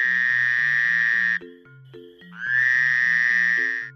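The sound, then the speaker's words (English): A frog croaks in two long, steady, buzzing trills separated by a short pause, loud, over soft rhythmic low notes underneath. “Frogs, they croak.”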